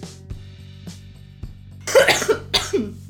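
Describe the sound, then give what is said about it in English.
After a few soft breaths over a low steady hum, someone breaks into a loud coughing fit: several harsh, raspy coughs in quick succession. “Genuinely, I was worried I was actually going to be sick there.”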